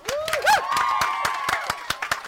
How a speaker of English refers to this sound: And once again, round of applause for Amy.